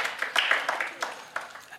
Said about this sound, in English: So everyone, just give Josh a little clap. Encourage him.